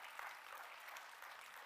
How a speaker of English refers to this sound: Go ahead, clap your hands. That's cool.